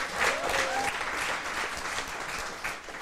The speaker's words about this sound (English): So can, ladies and gentlemen, can you give her a round of applause?